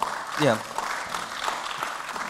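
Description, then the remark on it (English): An audience applauds with a steady, dense patter of clapping throughout, and a brief voice rises over the clapping near the start like a short cheer. “A deserved round of applause”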